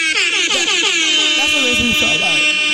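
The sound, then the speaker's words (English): A loud, shrill electronic alarm tone rings steadily throughout, harsh, while voices talk underneath it. “It was like beep, beep, beep, beep. Blazing jalapeno hot.”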